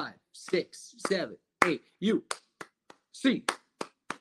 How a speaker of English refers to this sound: get your hands up, Bruins fans. 8 clap time, baby. And 1, 2, 3, 4.